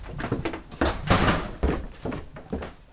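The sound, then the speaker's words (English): A heavy basement freezer door in a house in Providence, where edible insects are stored, is pulled open with a muffled thunk and rustling handling sounds, followed by a few softer knocks and bumps as it settles, with no one speaking. “Dave opens the door to his freezer.”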